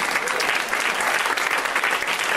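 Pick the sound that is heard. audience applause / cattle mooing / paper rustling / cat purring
audience applause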